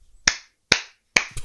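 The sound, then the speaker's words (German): A few sharp, crisp claps in a slow, steady rhythm, each one ringing out briefly before the next, with no talking. “Wir können ja erstmal einmal alle klatschen, würde ich sagen.”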